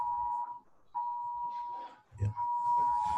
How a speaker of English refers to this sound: Oh Lord, everybody getting the Amber Alert.